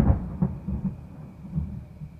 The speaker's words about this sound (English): That's thunder.